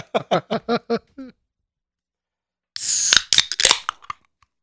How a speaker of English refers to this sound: Mark takes awkward drinks of water, Zuckerberg. Oh, God. That like, video is disturbing. Like, this is how humans drink water, right? Fucking chewing water. Who the fuck chews water?